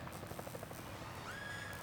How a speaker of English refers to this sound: There's a helicopter overhead. It drops Flannery and Lin-Lin.